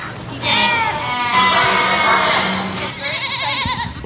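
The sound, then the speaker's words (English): Several goats bleat on the 55-acre Great Rock Farm in Georgetown, Massachusetts, which has more than 130 goats, in overlapping, wavering calls, a loud quavering chorus of high nasal cries that rises and falls without pause for about four seconds. “The 55-acre Great Rock Farm in Georgetown, Massachusetts, has more than 130 goats and twice as many sheep.”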